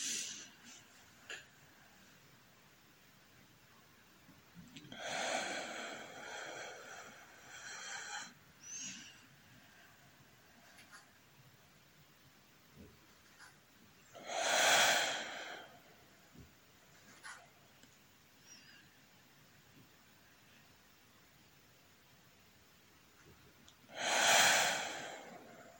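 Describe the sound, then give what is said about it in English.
Slow, deliberate breathing in a breathing exercise, in for a count of ten and out for five: a long drawn-in breath, then a few quieter seconds before two shorter, airy exhales spaced about ten seconds apart, with nobody talking. “In, 1, 2, 3, 4, 5, 6, 7, 8, 9, 10. Out, 1, 2, 3, 4, 5. Continue by yourselves.”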